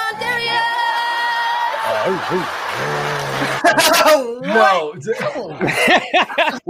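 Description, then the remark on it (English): A person mimics a dog's bark with a few loud, yelping vocal bursts near the end, following a stretch of sustained tonal sound, with chuckling and voices mixed in. “Did you just bark at her tits?”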